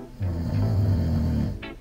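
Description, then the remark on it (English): A man snores with one long, deep, rattling inhale that rumbles steadily before ending in a brief breathy hiss, fairly loud with no talking. “Sometimes I just look at him, and I even taped him snoring.”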